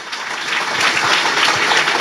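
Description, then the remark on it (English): A crowd applauds steadily to welcome a speaker, a dense, bright wash of many hands clapping that swells slightly and holds at a loud, even level throughout, with no voices standing out. “We need another good round of applause.”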